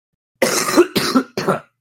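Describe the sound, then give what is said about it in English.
Three quick, harsh coughs in a row, fairly loud, the first slightly longer than the others, with silence before and after. “Cough was mine, not his.”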